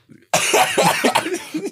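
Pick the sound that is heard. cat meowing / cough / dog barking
cough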